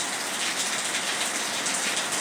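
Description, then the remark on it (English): Steady rain falls in a continuous, dense hiss of countless drops, even in loudness, with no voices or other sounds breaking through. “I receive the energy of the rain right now.”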